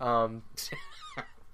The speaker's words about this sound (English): But, my cat's meowing in the background. It's annoying. I think he stops.